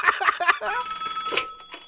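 A telephone rings: a few quick chirping bursts, then a steady electronic trill holding for a second or so before cutting off.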